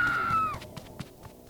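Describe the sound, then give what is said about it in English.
A girl lets out a short, high-pitched scream that holds for half a second and trails off, followed by a few soft, evenly spaced thumps. “Paola wrestled herself free and ran into her mom's bedroom, screaming”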